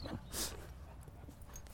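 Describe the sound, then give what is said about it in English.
A small labrador retriever moving as she seems to fall over: a brief burst of rustling or shaking near the start, then soft, scattered pattering and scuffling that continues quietly for under two seconds. “Hello, it's a retriever here. A little lab, maybe.”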